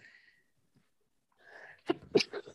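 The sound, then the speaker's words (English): A single sneeze: a short breathy intake builds up, then two sharp, explosive bursts finish it off, with near silence before. “Excuse God me. Bless you.”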